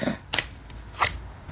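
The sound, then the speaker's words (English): Tarot cards being shuffled and the tenth card drawn, the Page of Coins: two short, crisp papery bursts about a second apart, fairly quiet, with a faint flick in between and no talking. “So now we have our 10th card for our 10th episode, and we can see perhaps what we can take from the conclusion.”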